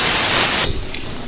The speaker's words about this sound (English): Whoa, I'm getting lots of static.